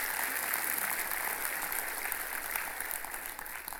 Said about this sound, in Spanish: Y es tan imposible, un aplauso al Señor por ellos, se lo va a dar.